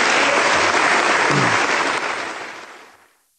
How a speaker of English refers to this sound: Those applause, that was a standing O, and the applause went on for a long time and became cheers and all this stuff.